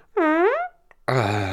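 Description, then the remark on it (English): A fake fart noise, loud: a squeaky, wavering blast of about half a second, a short gap, then a lower, buzzier raspberry-like burst. No one talks. “That was fake.”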